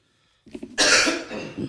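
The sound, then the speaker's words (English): A moderately loud cough: a couple of short throaty bursts followed by a longer, harsh hacking cough with a rough, breathy tail, heard on its own without talking. “Not loud cough.”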